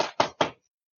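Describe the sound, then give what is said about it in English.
Three quick, evenly spaced knocks on a door, each a solid thump that rings out briefly, followed by silence. No one speaks. “I'm going to go knock on Sam's door.”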